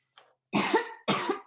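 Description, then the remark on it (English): A faint catch in the throat, then two heavy, harsh coughs of a long-lasting cough in quick succession, loud, with no talking around them. “And again, I've had the cough forever.”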